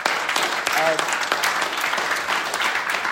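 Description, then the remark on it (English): Sustained audience applause for the staff at Laser Quest, a dense crackle of many hands clapping at steady loudness for the whole stretch, with a brief whistle or cheer rising faintly through it. “So if we can have a big round of applause for the staff, all the work they've done.”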